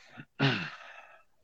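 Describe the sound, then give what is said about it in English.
A person yawns: a quick intake of breath, then a voiced, drawn-out exhale that starts loud, slides down in pitch and trails off into a breathy fade. “And I think it's quite fitting that you're yawning when you said that, because they play the most boring style of footy getting around at the moment.”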